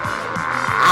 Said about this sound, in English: It's in my car! I'm driving fast! Man, I'm going like 80.